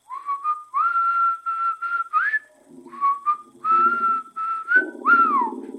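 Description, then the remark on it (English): A person whistles a clear, steady melody of sustained notes with short rising slides, loud, with a low buzzy tone briefly underneath in places and no talking. “The one that whistles.”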